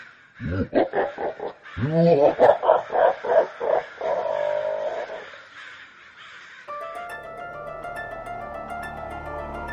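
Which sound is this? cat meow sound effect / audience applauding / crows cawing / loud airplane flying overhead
crows cawing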